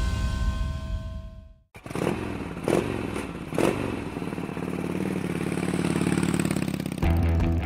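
motorcycle engines running

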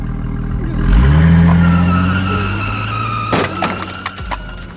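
car speeding off

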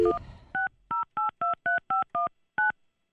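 phone number being dialed

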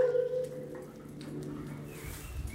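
dogs barking

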